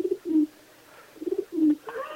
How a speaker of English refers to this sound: Is that an owl? It's like a chicken or something. I don't know.